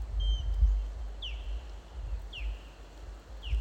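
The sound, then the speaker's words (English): Three short, sharp descending whistles from an osprey up in a tree repeat about once a second, fairly faint over steady low rumble and outdoor background noise. “That's an osprey.”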